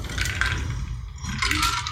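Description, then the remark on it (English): Wet liquid sounds of someone taking a drink of Tang-flavored water, a steady sloshing and gulping lasting a couple of seconds with no talking. “So I'm going to take a drink of my delicious flavored water.”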